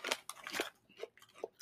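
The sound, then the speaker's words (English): Crunchy chewing on tortilla chips from Indonesia, made by the Krip Krip company: a handful of loud, dry, crackling bites in an irregular rhythm, with short quieter gaps between them and no talking. “Like they taste like artificially flavored corn chips.”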